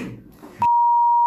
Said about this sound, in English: I'm not going to say the name, but. Just say it. We'll beep it out.